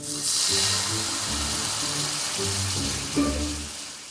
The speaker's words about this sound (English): While the shallots were frying in the wine, Nikki started toasting some yummy bread.